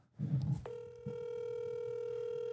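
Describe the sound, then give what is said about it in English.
A brief low rumble of handling, then a steady electronic telephone call tone with a buzzy, harmonic edge starts and holds unbroken, as an outgoing phone call rings on speakerphone. “I'm going to call him now as we're sitting here. Yeah, call him. Put on speaker.”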